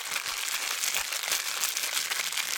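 A hand rummages through a container holding about 7,000 paper entry slips to pull out the winner of the Die Hard Dice competition, making a steady crinkling and rustling that continues without pause for a few seconds, with no one speaking.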